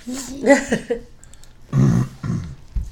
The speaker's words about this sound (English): Nice cough